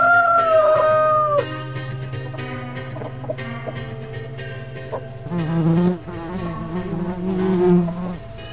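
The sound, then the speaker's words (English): At a ramshackle farm with a chicken run on the outskirts of Arkham, as afternoon light fades toward dusk, a rooster crows once at the start over a steady, droning buzz of insects that continues throughout, with scattered faint clucks and rustles of farmyard activity layered on top. “On the outskirts of Arkham, not too far away, is a ramshackle farm, and an 11-year-old boy shaking with terror in a chicken run.”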